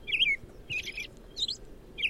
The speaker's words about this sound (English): I hear something similar to that from my resident robins pretty much every morning now. Which is awesome. Usually every evening, too. That's just one of the robin songs.